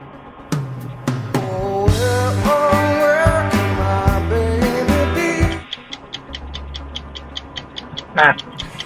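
A game show's 60-second countdown music: a bright, bouncy tune with plucky bass and tinkling melody plays for about five seconds, then drops to a steady, evenly spaced ticking clock under a low hum, with a brief chime near the end.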